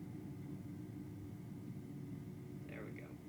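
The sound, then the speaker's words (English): A steady roar of an airplane rolling along a runway after landing and not stopping, with a continuous low rumble and a brief higher squeal near the end. “The plane would not stop once I did get it on the ground.”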